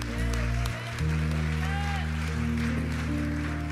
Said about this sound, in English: I think it's more awesome than that. That sounds like a golf applause.